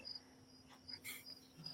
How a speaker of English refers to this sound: No, all I hear is crickets.